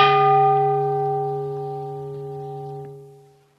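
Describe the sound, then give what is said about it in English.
A single meditation bell struck once, its rich, steady overtones ringing out clearly and slowly fading over several seconds. No voices. “And you might notice that you like the bell and want to buy one and take it home, and right?”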